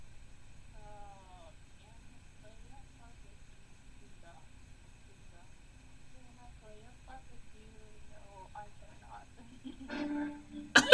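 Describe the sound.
After a long near-quiet stretch with faint voices, a brief low, buzzy organ blast sputters out at the very end, a rude fart-like blurt that cuts off abruptly.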